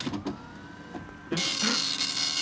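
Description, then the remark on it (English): A printer prints out an email: mechanical whirring and clicking of a page feeding starts softly and then turns loud and grinding partway through, with no voices. “It's an email, so I'll just print it out.”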